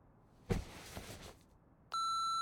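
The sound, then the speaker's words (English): After a brief burst of rustling noise, an answering machine's beep cuts in: a loud, steady electronic tone with a bright buzzy edge that holds unbroken until the end. “Please leave a message at the sound of the beep.”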